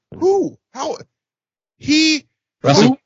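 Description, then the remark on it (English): A woman imitates an owl with four loud hoots: two quick calls, a short pause, then two more, each a rounded voiced 'hoo' with no other talking. “Is she a fucking owl?”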